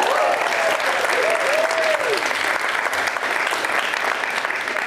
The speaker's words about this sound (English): Round of applause.